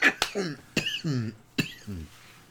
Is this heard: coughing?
yes